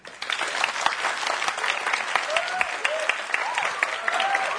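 An audience claps together in steady, dense applause that holds at an even loudness for about five seconds, with a few faint voices calling out over the clapping.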